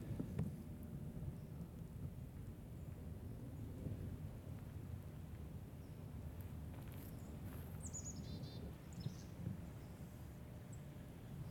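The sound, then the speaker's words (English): Steady low rushing water fills the scene, and a few brief, faint bird chirps flutter high above it near the end. “When there's water, there's birds.”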